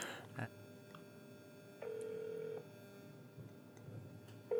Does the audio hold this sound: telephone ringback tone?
yes